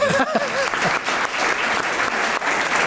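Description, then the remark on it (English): A crowd applauds with dense, steady clapping that stays loud for the whole stretch, while a few voices call out faintly over it at the start. “See, I am going to tell my wife that they applauded, and she's going to say, oh, come on, get serious.”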